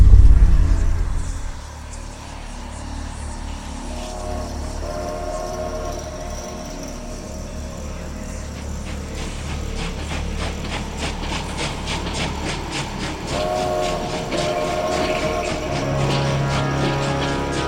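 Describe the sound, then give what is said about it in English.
A train pulls away from a station with a deep, steady rumble and tonal engine hum, then a rhythmic clickety-clack of wheels on rails builds and quickens as it gathers speed. No voices. “Anyways, sit back, pour a glass of blub, and turn up the volume because it's time to depart the station. All aboard.”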